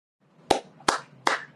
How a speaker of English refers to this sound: I think maybe we should finish up with just some applause for both of them.